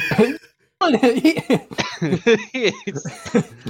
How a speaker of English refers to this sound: I can't stop coughing either. I wouldn't take a sip of that until you're done coughing.